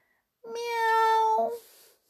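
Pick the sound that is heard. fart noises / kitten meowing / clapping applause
kitten meowing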